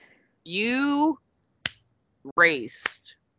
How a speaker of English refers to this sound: You raced. I don't know if that deserves a clap. It's a slow, sarcastic clap. Okay. Okay. It's not a real clap.